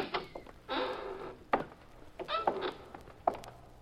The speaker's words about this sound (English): Walk into that warehouse. Go on. The side door is open. Push it and go on in.